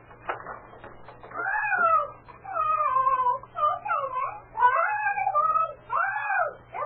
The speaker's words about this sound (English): You're getting awfully fed up with that parrot. Well, I could do without it myself. Talkative bird, isn't it?